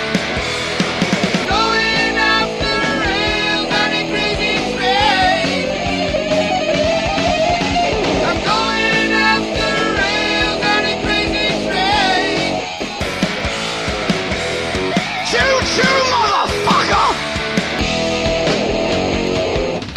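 A loud, dense music mashup plays continuously for the whole stretch, with layered melodic lines, sliding tones and a driving percussive beat, and no talking.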